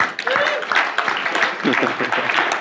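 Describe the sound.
A crowd applauds steadily and fairly loudly for a few seconds, the dense patter of many hands mixed with scattered cheers and voices from the audience.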